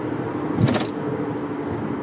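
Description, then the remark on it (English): An Infinity car moves over into the right lane with steady engine and tire noise, a brief louder swell around the middle as it shifts past, with no voices. “QR, whatever that car is, you're going to move to the right lane.”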